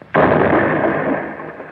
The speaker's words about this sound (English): The door's blown clean off.